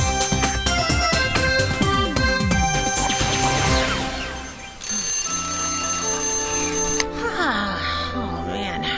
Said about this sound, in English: Goofball who set the alarm clock to go off on Saturday.